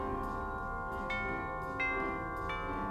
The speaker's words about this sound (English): That doorbell, however, offered something I would have never expected.